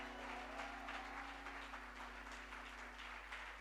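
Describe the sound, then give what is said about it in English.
A church audience claps together as a clap offering to the Lord, a dense, steady wash of many hands holding an even loudness throughout, with a low electrical hum running underneath and no voices. “Please, if this clapping is for God, it's not good at all.”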